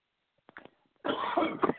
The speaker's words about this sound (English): and now you got me coughing, I guess it's contagious,